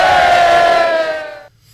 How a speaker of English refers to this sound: Man, I love a crowd pop, whether it be a sporting event, wrestling entrance, but the crowd pop after he said six in that locker room, the player pop was awesome. That was chills inducing there.